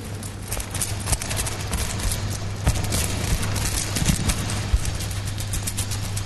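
Coins, together less than £7 and with no pound coins among them, jangle in a trouser pocket. It is a steady run of bright metallic clinks and rattles shaken in a loose rhythm, with a low hum underneath and no one speaking.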